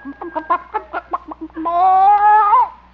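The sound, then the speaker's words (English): A hen named Hortense, still sitting on her nest, gives a quick run of about nine short, rhythmic clucks, then breaks into one long, drawn-out complaining squawk that rises and fades. No one speaks. “See, how about this nest? Oop. Hen still sitting on it.”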